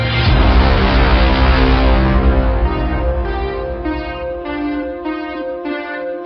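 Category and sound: signal or alarm, bell ringing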